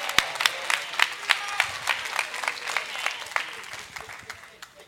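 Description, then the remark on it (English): Three parents clap their hands in scattered, irregular bursts that overlap into light applause, moderately loud, tapering off slightly toward the end. “I had three parents clap their hands.”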